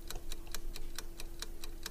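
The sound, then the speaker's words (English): A game show countdown clock with 30 seconds on it ticks quickly and steadily, about nine sharp ticks in two seconds, over a faint constant hum with no voices. “It is now your turn to pick a name. 30 seconds on the clock.”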